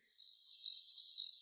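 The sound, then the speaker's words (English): A steady cricket chirp trills continuously in a high, narrow pitch band, pulsing a little louder in a few bursts, with no voices or other sounds around it. “when you edit this, add some crickets in.”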